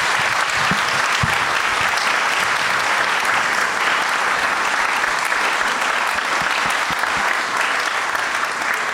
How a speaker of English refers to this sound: Ladies and gentlemen, big round of applause.